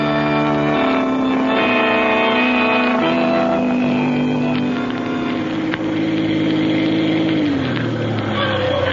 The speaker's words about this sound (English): park the car right here.